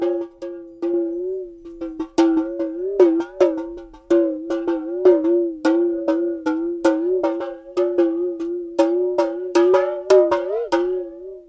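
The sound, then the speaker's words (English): A Tibetan singing bowl with some water at the bottom, struck over and over in a quick, uneven rhythm, sounding akin to a talking drum. Its ringing, mid-pitched metallic tone wobbles and bends in pitch, with no voices. “This is a Tibetan bowl that, when struck, would sound like this, but with some water in it at the bottom, can actually kind of sound akin to a talking drum.”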